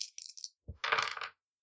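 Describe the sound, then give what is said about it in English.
Dice click and clatter across a hard tabletop as they are rolled for perception checks, a few light rattles followed by a thud and a louder, busier scatter of tumbling dice that settles quickly into silence. “Which is impressive, because I'm rolling half my dice.”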